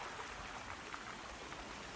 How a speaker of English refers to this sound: Waves crashing against the rocks, small pebbles rustling down the beach in the withdrawing water.